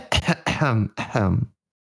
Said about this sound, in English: You got your, did you clear your throat? Yeah, I got it. I got it. Okay, good.